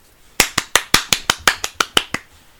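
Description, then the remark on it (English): A short, half-hearted round of applause given after an improvised slam poem: about eleven sharp hand claps at a quick, steady pace, lasting under two seconds, with no voices. “That was a pitiful round of applause.”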